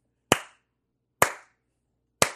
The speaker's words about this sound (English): You want to clap three times?